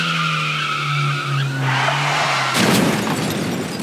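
Car tires screech in a long, loud skid with sustained tonal squealing as a driver runs a red light, then a sudden crash of impact and shattering debris cuts in, trailing off into noisy clatter.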